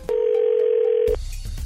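A single steady ringback tone from an outgoing phone call to a radio listener, one even mid-pitched buzz lasting about a second, then a soft click and line noise as it cuts off. No one speaks.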